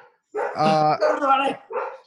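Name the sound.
dogs barking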